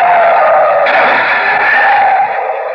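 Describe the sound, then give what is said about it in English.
A loud, sustained screech of tires as a car skids hard, swerving on a road to avoid an oncoming car headed straight for it; the squeal holds steady for nearly three seconds before easing slightly at the end, with no voices. “I was lucky I was able to pull away in time, otherwise our destination would have automatically been changed from Mason City to Mount Cleardale”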